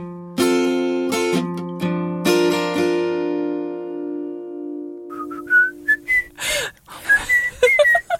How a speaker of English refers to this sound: Don't laugh at me whistling in a jaunty fashion. I wish I could whistle this well.